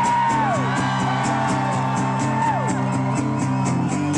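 A crowd cheers loudly and steadily, with two high whoops that swoop downward in pitch, over a continuous rhythmic pulse throughout.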